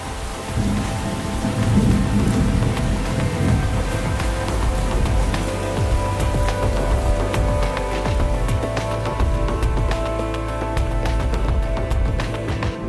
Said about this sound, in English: And you know, I found myself doing that in the garden, just sitting on the soil and looking at the sky and hearing the thunder and, you know, listening.